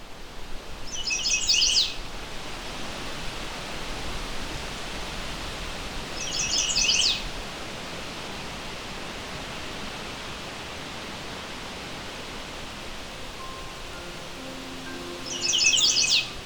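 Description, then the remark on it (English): A male chestnut-sided warbler, on territory in late May along the Huron Fringe on the eastern shore of Lake Huron, North America, sings three short, bright, high phrases, spaced several seconds apart, over a steady rushing hiss of background noise. No one speaks. “This is the song of a male chestnut-sided warbler.”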